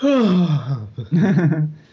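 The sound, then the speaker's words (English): A person voices a fake yawn: a drawn-out, breathy vocal sound sliding down in pitch, a brief break, then a second rough, groaning exhale. No words are spoken. “was that you trying to do a yawn noise?”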